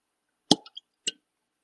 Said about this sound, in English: Oh, let me see if I can get a cork pop on this one. So this one is brand new. It hasn't been opened yet, so we'll see.